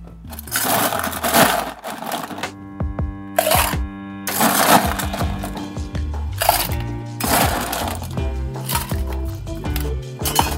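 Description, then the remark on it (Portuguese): Ice cubes clatter and crunch into a metal cocktail shaker in several loud bursts while a gin cocktail is being made, with sharp clinks and brief ringing pauses between pours. “Na nossa coqueteleira, vamos colocar o gelo.”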